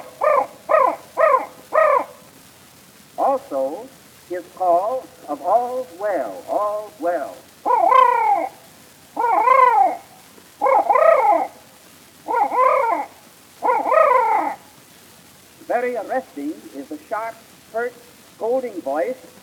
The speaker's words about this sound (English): most interesting of all watchful sounds is the guard note of the crow.